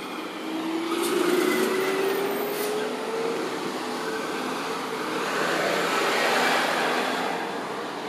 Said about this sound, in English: I don't know what's going on with all these trucks this morning